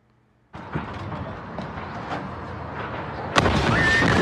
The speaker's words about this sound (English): So this one just says a firework factory explodes. These are always fun.